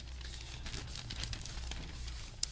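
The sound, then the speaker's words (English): Newspaper pages rustle and crinkle steadily as someone handles the paper to show a picture printed in it, a soft papery shuffling that ends with one sharp, brief snap. No one speaks. “So he, I got to show this picture that we have in the paper because I love this picture.”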